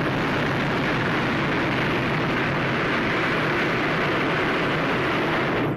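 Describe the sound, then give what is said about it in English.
A hot-air balloon burner fires in one long, steady, loud roar, a dense rushing blast of flame that holds constant for several seconds before cutting off abruptly. No voices are heard. “Burner coming on.”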